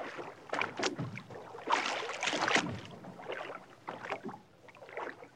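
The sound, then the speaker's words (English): Oars dip and pull through water in a steady series of splashy strokes, with sloshing and dripping between them, moderately loud, with no voices, as a boat carrying Confederate messengers is rowed about 4 miles out to Fort Sumter. “Congressman Roger Pryor, our trio of messengers row the 4 or so miles back out to Fort Sumter.”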